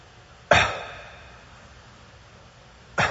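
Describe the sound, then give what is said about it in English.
A person imitates anxious breathing: a sudden loud gasp that trails off into a held, near-silent pause, then another abrupt breath bursts out at the end. “I know that I'm heavy, and I'll breathe like this.”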